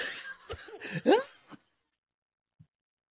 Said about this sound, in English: You made me cough on that.